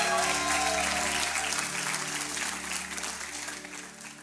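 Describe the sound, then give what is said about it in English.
A church audience claps and cheers for Jesus in a dense, steady wash of applause with scattered shouts, holding strong for several seconds before easing off slightly at the end over a low, steady hum. “And everybody says, come on, everybody says, come on, if you love Jesus, can you make some noise one time?”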